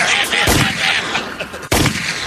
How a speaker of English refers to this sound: Susan's going to be hanging out the window with a 45. Bang, bang, bang. Just firing up.